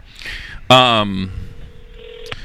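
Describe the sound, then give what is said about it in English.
Electronic phone tones from a call being placed on speakerphone: a loud, buzzy burst of tone followed by a steady, thinner ringing tone that holds for about a second, clear. “The phone is ringing.”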